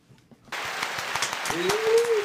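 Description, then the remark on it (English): After a brief quiet moment, dense clapping bursts in and keeps going steadily and fairly loud, with a drawn-out tonal whoop or whistle rising over the applause near the end. “Clap, clap, clap, clap, clap.”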